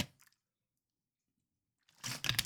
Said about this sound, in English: Whew, I need a sip of water. Give me one second.